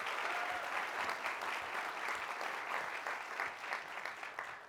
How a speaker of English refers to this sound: I am very grateful to the Center for Public Leadership at the Kennedy School for organizing this conference. We should give them a round of applause for that.